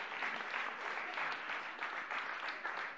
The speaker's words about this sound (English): Very good. Very good. Okay, round of applause for these two. Thank you, guys.